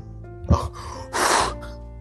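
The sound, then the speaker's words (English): A single sneeze: a short sharp intake of breath, then a loud, breathy explosive burst lasting about a third of a second, over a faint steady background hum. “Not only do I have a headache, but now I got allergies.”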